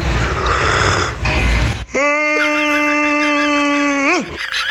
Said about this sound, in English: Is that a yawn? I'll give it 1 yawn out of 5.